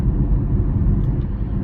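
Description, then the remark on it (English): A steady, low rumble fills the space, like the droning road noise inside a car, recorded while the speaker sits in their car, continuous and fairly loud with no voices over it. “Sorry for the portrait landscape, but the portrait orientation, but I'm in my car, so there it is.”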